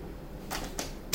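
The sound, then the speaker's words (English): Tarot cards being shuffled: three quick, crisp papery bursts with short pauses between them, the last one sharpest, over quiet background with no talking. “This goes back to what I was just saying while I was shuffling.”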